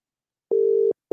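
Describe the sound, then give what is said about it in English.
A telephone busy signal on an unanswered phone call: one steady mid-pitched electronic beep lasting about half a second, a short gap, then the next beep starting. It is clear, with no voices. “She ain't answering.”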